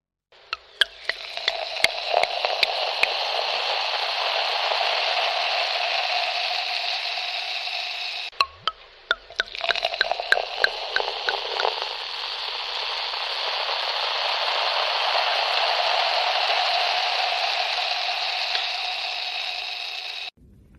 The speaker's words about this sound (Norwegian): Om dere kan høre forskjell på prosecco og champagne. Ok. Høre boble. I en skjenking i et glass. Akkurat. Om vi kan høre forskjell på størrelsen på boblene?